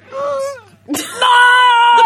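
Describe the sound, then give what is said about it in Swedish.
A voice imitates the ugly crying of someone very sad trying to hold it in: a wavering, whimpering sob that trails off, a brief pause, then a louder, strained wail held until the end. “För då fulgråter man oftast.”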